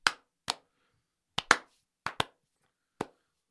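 A handful of sharp hand claps arrive slowly and unevenly, some spaced apart and some in quick pairs, with silence between them and no talking.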